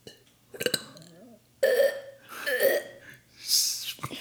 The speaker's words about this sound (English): I got burp.